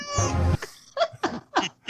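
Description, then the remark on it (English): A cat meows in a long, harmonic wail, followed by a quick run of four shorter, rising yowls, fairly loud with no talking over it; a sound effect used for the Washington State Cougars. “I think the Cougars one is the one that makes me laugh because it's just a cat meowing.”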